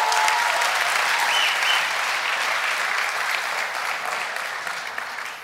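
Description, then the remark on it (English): A crowd of about 6,000 people at a rally at City Hall in Los Angeles applauding, with loud, dense, continuous clapping throughout, a brief whistle near the start, and the applause easing slightly toward the end. “Take a look at this crowd. It's phenomenal. 6,000 people came out, and it was a result.”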